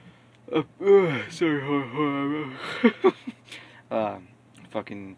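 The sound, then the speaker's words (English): A drawn-out, voiced yawn from someone about to record an audiobook swells and sags in pitch for a couple of seconds, followed by a few short breathy vocal sounds. “I was about to do an audiobook, and then I just, like, yawned.”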